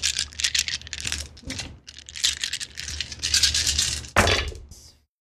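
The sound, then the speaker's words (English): Dice clatter and rattle in a tray for several seconds, a dense run of sharp, bright clicks that swells toward the end with one louder burst before stopping. “So go ahead and clear out the dice tray, and then I will roll for her.”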